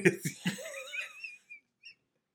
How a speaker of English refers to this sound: that was not a motorcycle nor a fart. That was the dog.